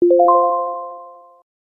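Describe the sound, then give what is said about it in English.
A short electronic beep-like chime in a language lesson, cueing a short pause for the listener to repeat a new phrase. Several notes rise quickly in pitch one after another, then ring together and fade out after about a second and a half, with no talking. “Then, there'll be a beep and a short pause for you to repeat the new phrase.”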